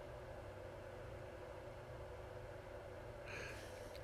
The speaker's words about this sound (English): This phone picks up everything. I now know you can hear that little space heater, can't you? You know why I got one? I turn on the heat in the whole place. 2 minutes later, it's boiling hot. Then I turn it off. Then it gets cold.